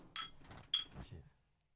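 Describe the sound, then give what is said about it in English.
Glasses of fruit beer clink together in a toast, two bright, sharp chinks about half a second apart, the second ringing briefly, over a low murmur of movement. “Cheers, hold that up to the microphone there, bud.”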